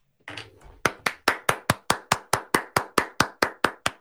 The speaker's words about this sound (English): That's hand claps. Connor Bedard. Get your own keyboard and you can hand clap.